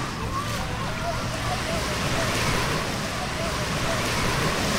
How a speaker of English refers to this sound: And we're now, like, standing at the Atlantic Ocean.